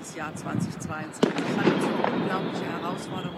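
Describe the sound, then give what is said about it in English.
New Year's Eve fireworks set off by revelers in Berlin crackle and pop, with one sharp bang, while a voice records a video address over the steady, noisy backdrop of festive explosions. “She didn't mic herself, and she filmed the address as New Year's Eve revelers in Berlin were setting off fireworks behind her.”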